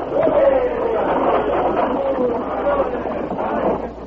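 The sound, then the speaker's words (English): A fair-sized crowd waiting in front of a stagecoach station next to the general store in El Sabor, Texas, murmurs steadily as the stage arrives, many overlapping voices blending into an indistinct babble at an even level, with no single word standing out. “And a fair-sized crowd waited in front of the station, located next door to the general store.”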